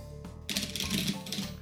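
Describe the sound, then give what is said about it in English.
A large deck with a lot of cards being shuffled, a dense burst of rapid papery flutters and clicks that starts abruptly and runs for about a second over a faint low hum. “It happens when you have a lot of cards. It shuffles well.”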